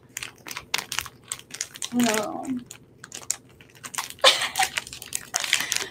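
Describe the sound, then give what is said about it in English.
Someone fumbles with a crinkly plastic bag, trying to open it and producing irregular bursts of loud crackling and rustling as they tug at it, while a voice briefly speaks in the middle. “I'll do whatever it takes to open this bag.”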